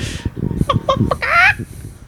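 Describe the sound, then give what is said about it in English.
A person does a loud chicken impression: a few short clucking bursts followed by a drawn-out, rising squawk, then trailing off. No actual words are spoken. “That's a good ass chicken impression.”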